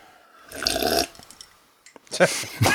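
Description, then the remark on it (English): A loud, wet slurp of a drink straight into the microphone lasting about half a second, then a quieter pause with small clicks, then another burst of noisy slurping. “Yeah, just slurp it right into the microphone.”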